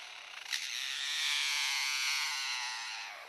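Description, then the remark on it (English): An imitated chainsaw: a steady, high, buzzy whine that swells after a brief sputter, holds for a few seconds, then tapers off. No one speaks. “A chainsaw?”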